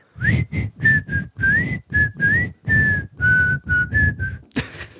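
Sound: person whistling a tune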